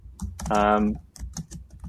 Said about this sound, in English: Is somebody typing? We're getting some typing noise coming through here.